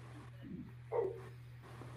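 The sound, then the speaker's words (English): A few muffled dog barks sound in the background over a steady low electrical hum, spaced irregularly, with the last bark noticeably louder and sharper than the others. “all right, hold on. I got dogs.”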